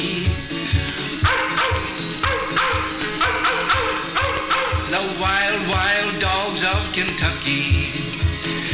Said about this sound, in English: Oh, their savage howls, a devil's blood would freeze. The wild dogs of Kentucky, the wild dogs of Kentucky.